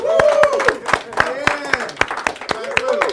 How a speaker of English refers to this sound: Woo! Hold on. I gotta lead the clap. Woo!